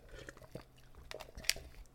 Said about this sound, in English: I see the little pop. You might have heard it like clack clack in my mouth as I spit it back into the plastic cup.